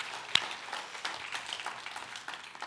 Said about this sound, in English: They're doing a lot of work, not only with our budget, but also to help make sure that we're making the wise decisions, that we are able to do this, and that deserves our appreciation. So let's give them a round of applause, why don't we?